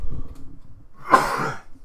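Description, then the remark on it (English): A single harsh, wet cough bursts out from a person with phlegm in the throat, a rough throaty rasp that trails off over about half a second after a moment of low murmuring. “I'm coughing worse now than last week.”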